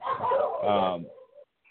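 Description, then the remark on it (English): A dog barks and whines in a short burst, its voice rising and falling before trailing off into a brief, thin yelp. “I don't think your dogs agree with you, yet, sir.”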